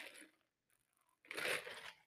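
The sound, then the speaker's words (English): Two soft, airy slurping sips from an oat milk latte: a short one, a pause, then a longer, louder draw. No talking. “It's kind of, hold on, let me take a sip of my oat milk latte.”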